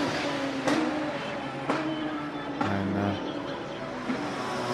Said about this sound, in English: here the cars go roaring past into the end of that pit straight. It's amazing.